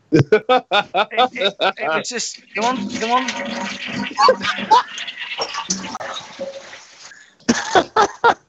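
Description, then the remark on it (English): A toilet flushes with a few seconds of loud, gurgling rushing water, bracketed by someone talking briefly before it starts and again as it drains away. “We can hear the flush.”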